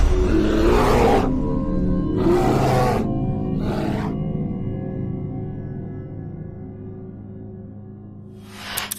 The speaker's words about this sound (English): It's a grizzly. Should we get out of here? No. We're gonna watch and listen.